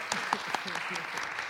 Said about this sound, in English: A very big round of applause.